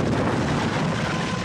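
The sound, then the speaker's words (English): A loud, sustained roar of an airplane exploding on a Nazi airfield after gasoline leaking from a broken fuel tank caught fire, a dense rumbling blast of noise that holds steady without pause for its whole length, with no voices. “The gasoline caught fire and the plane exploded.”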